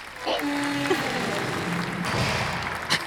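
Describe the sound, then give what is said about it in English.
A voice imitates a heavy vault door opening for the Nature Room 101 segment: a brief creaky, pitched hum, then a long, steady breathy hiss lasting about three seconds, ending with a short burst. “That was the noise, by the way. The noise that we do for the vault.”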